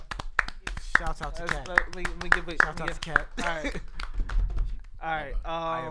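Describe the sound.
A steady run of hand claps, about a dozen in even rhythm, rings out over people talking and laughing, then the clapping stops while the voices carry on.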